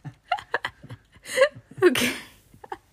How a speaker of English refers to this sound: he coughed or sneezed, whatever that was